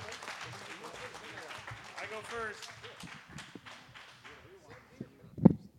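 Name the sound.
audience round of applause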